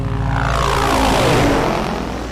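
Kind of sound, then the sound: vehicle, helicopter flying overhead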